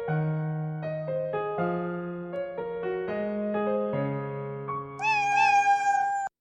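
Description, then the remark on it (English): A string of steady, tuned cat meows steps from pitch to pitch like a melody, ending in one higher, wavering meow. The sound is fairly loud, with no talking. “Well, that was the kitty cat twofer.”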